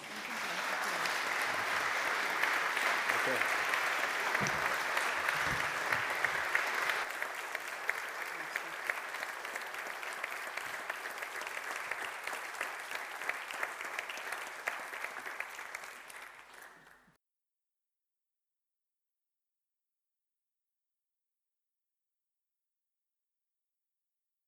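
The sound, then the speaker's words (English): Sustained audience applause from a sizeable crowd in thanks to a person being honoured, loud and dense with steady clapping for about seventeen seconds before stopping abruptly; a brief spoken word rises briefly above it. “What about a round of applause?”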